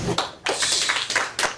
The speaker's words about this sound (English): Clapping.